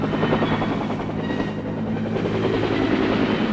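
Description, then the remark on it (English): A Huey helicopter takes off, its engine and rotors roaring steadily, a dense droning whine with a rapid thumping pulse, loud and continuous with no voices. “The Huey takes off like an angry hornet.”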